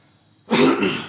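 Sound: throat clearing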